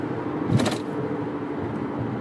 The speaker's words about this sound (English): Look. Infinity QR, whatever that car is. You're going to move to the right lane.